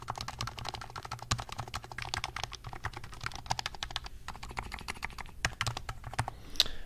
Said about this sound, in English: And these are from Taiwan. These are the best keycaps in the world that you can get. They feel amazing. They sound amazing.